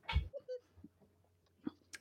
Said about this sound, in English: Yep, kitty noise in the background, just how it is.